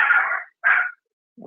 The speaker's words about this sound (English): What kind of dog is that? Yeah, is that that sounds like one of those mini dogs. Is that like, do you have like a little, like a rat dog?